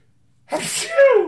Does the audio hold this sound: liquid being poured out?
no